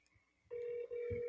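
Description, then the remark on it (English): A call to a phone number rings through a handset: a steady electronic ring tone starts after a short quiet moment, briefly dips, then continues, sounding slightly tinny. “There is a phone number that you are able to call, and if you call it, you get a very special message.”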